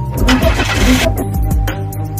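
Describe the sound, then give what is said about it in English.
A car engine cranks over and over with a steady, rhythmic churning, loud, but never catches and settles into running. “While leaving, he pretends his car has stopped working.”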